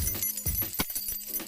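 A bunch of keys jangles in quick, irregular bursts, with bright metallic clinks and a few duller knocks over about a second and a half, and no voices.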